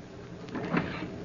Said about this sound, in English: and I was called into the captain's cabin. I opened the door.